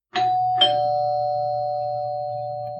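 doorbell ringing

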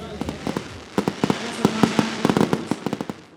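fireworks exploding

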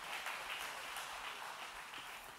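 audience applause

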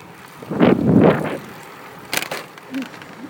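cars passing on road

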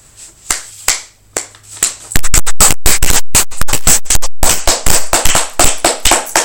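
hand clapping

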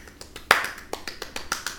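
hand clapping

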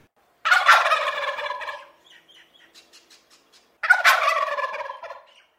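wild turkey gobbling

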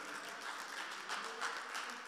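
round of applause

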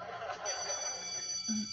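school bell ringing

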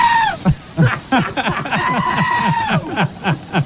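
goat screaming

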